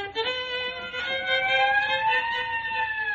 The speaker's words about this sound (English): How do you like that? I just started playing and already the neighbors got the police here. No, it's a squad car pulling up.